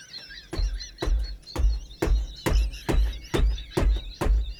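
Someone pounds on a chair armrest in a steady rhythm, about nine heavy thuds roughly half a second apart, with a high, wavering squeal running above the beats.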